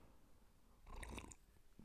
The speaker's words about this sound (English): I'm going to sip my coffee.